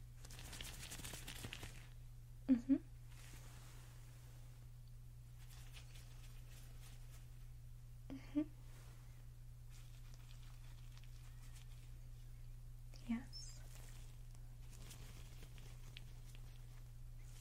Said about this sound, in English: We're going to do a couple of hearing tests. I want you to let me know when you hear my fingers wiggle, okay? So close your eyes, and I'm going to begin.